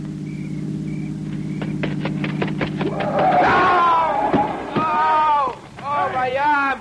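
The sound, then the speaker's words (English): A car's low, steady engine hum rumbles for a few seconds with scattered knocks and thumps, then excited voices take over as the engine noise fades beneath them. “Listen. It's a car. It's got to be the one I think it is.”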